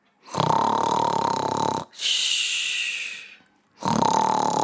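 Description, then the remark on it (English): An enormous sleeping giant's loud, rumbling snore: a deep, rattling inhale followed by a long breathy exhale, then another rumbling snore starting. Prominent, with no talking. “If you don't whisper, you'll wake the enormous giant who's snoring.”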